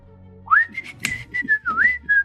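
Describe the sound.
Someone whistles a short tune with rising and sliding pitches over about two seconds, broken into several brief phrases, with faint background clatter underneath.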